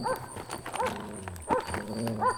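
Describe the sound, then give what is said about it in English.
Guard dogs bark in short, repeated bursts, with a scuffling, clattering rhythm underneath as if they are rushing closer. No one speaks. “Guard dogs!”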